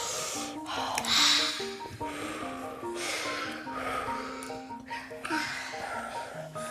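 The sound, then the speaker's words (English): Loud, breathy inhales and exhales repeat in slow swells every couple of seconds, airy, over soft sustained tones humming steadily underneath. “My breath goes in and out, blowing like the wind.”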